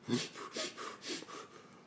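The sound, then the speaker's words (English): A person imitates a dog sniffing a scrap of Kappa brand pants material, with four or five quick, breathy nasal snuffs in an uneven rhythm, fairly quiet. “makes the dog sniff it. Now you give me that good sniff, girl.”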